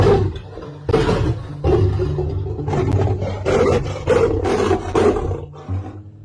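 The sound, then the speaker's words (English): A male lion at a kitchen window in the morning roars in a series of deep, rumbling bursts, loud, each roar rising and fading in a steady rhythm with no voices present. “As you can see, you've got a beautiful male lion looking through my kitchen window”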